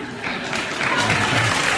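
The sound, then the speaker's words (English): A crowd applauding, a dense, steady wash of many hands clapping that holds at an even loudness for about two seconds without a break. “Clap, clap.”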